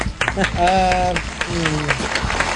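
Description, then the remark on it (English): Audience applause at the end of a comedy set called Headlines, a steady patter of many hands clapping at moderate loudness, with a voice calling out over it in drawn-out, pitched tones. “There's a lot of applause in that in this one.”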